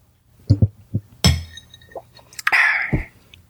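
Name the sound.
glasses clinking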